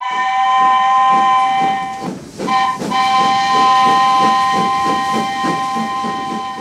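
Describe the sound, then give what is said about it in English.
A loud steam train whistle blows long and steady, briefly breaking off and resuming, over the rhythmic chugging and clatter of a rolling train travelling to the South Shore in the early afternoon. “On Friday, we caught an early afternoon train to the South Shore.”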